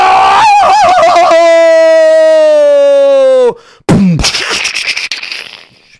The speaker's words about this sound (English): And finally, the wagon wheel fell off. and as it fell off, the horses were still dragging. And suddenly the wagon turned over because it was missing one wheel.